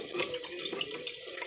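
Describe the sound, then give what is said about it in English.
Cold water in a bong bubbles and gurgles steadily for a moment as smoke is drawn through it, a dense churning with no talking over it. “I love that that shit filters through so it's like nice and cool.”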